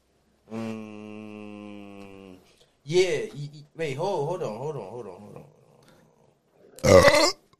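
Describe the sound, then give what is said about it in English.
A long, drawn-out belch rumbles steadily for nearly two seconds, followed by warbling, croaky vocal noises and a final short, harsh burst of sound. “The burping thing.”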